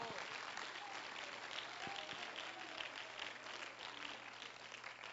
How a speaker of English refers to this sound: Oh, clap your hands and let's give praise to the Lord.